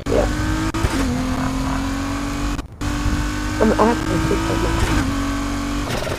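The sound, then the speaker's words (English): Video game race car engines drone steadily and loudly throughout, with a brief cutout near the middle, revving and whining at a sustained pitch during a street race. “There's a street race down here.”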